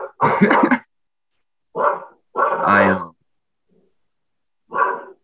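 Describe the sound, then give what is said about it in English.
A dog barks in four short, loud bursts with pauses between them, the last coming after a longer gap. The barks stand alone without other noise. “Shout out to my dog.”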